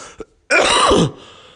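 A single loud, rasping cough bursts out for about half a second after a brief faint catch of breath, harsh and throaty, then trails off into quiet background noise with no one speaking.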